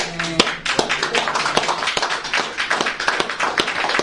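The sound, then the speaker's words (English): An audience claps in a sustained round of applause given to God, many hands striking in a dense, uneven patter with a few sharper individual claps standing out, steady and fairly loud for the full length. “So what about giving a round of applause to God today?”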